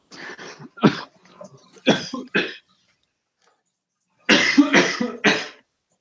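A loud coughing fit from someone who swallowed water the wrong way: harsh, sputtering coughs in three quick clusters separated by short pauses, with no talking.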